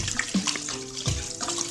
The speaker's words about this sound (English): So it's a fortified wine, and it's a hangover times two in a bottle. And Pouring a full bottle of it in.